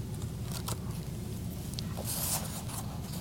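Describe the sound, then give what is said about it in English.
Thin Bible pages rustle and flip as a reader turns to a scripture, with a couple of soft crinkles early on and a louder, crisp swish of a page turning near the end, over a low steady hum. “Let me turn my page here so I can see which one it is.”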